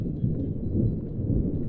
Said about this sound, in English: What do you think it is? That's right, with lightning, you get thunder.